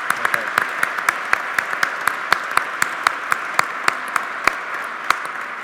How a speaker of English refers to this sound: So please, a round of applause for everyone who's a music minister.